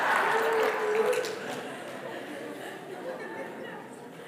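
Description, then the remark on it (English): Scattered audience applause mixed with crowd chatter and a little laughter, loudest in the first second or so, then easing into a steady, softer patter. “No, don't clap my lack of discipline.”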